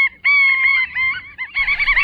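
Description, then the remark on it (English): A willet (Tringa semipalmata), a plain gray shorebird with bold flashing wings, calls loudly, a rapid series of shrill, ringing notes that run together with only a brief break before the piercing calls resume. “It's today's Talking Birds featured feathered friend, the plain gray shorebird with the bold flashing wings, the willet.”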